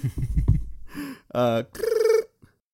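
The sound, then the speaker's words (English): A voice imitates a ringing telephone with a few sung, warbling tones, fairly loud, after a brief rumbling start and ending in silence. “It's really hard to make a phone ring. You literally ring me in every time. And I go do do do do do.”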